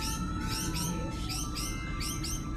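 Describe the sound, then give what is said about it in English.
A flurry of quick, bright bird chirps repeats in rapid succession, several birds calling over a steady low background hum, with no one talking. “And now the station is overrun with them, and what the hell kind of birds are these anyways?”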